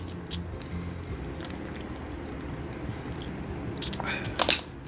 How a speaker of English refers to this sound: Let's get a sip of water here.